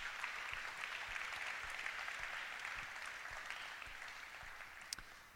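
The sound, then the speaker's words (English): Sustained audience applause at a church gathering in Kansas City, as people sit down, a dense, steady wash of many hands clapping that stays loud throughout and eases off slightly toward the end, with no voices heard. “Let's give them another round of applause as they sit down.”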